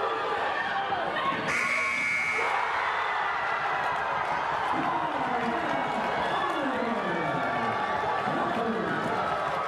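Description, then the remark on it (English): An arena buzzer blares for about a second near the start of a basketball play, as a buzzer-beater heave goes up, loud and steady over a constant roar of crowd noise, with voices talking through the whole play. “This one certainly a good job of not only of a good heave at the buzzer, but some solid defense as well.”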